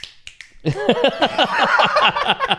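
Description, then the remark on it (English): A few scattered finger snaps, then a crowd snapping their fingers in place of applause, a dense, rapid crackle of many overlapping sharp clicks that stays fairly loud to the end. “I was doing the snap instead of clap, but it wasn't entertaining.”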